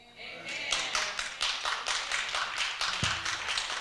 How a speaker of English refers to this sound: All right, stop clapping. Stop clapping. I ain't mean to be rude.